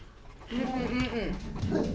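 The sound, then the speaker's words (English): A dog barks in a strange, drawn-out way, its voice wavering and warbling for over a second after a brief quiet start, loud and alone without other talk. “What the hell was that? Where did that come from? Time out. Demon dog.”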